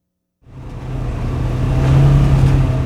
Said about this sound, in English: Hooper Bay Tribal Administrator Jan Olson slams down the gas pedal of his side-by-side off-road vehicle, and he drives through mist and spray from crashing Bering Sea waves.